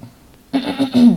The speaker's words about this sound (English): And I still have to manage my cough. And a lot of people who had COVID, a lot of my friends who had COVID did say that with a cough, it does take a longer time for it to subside.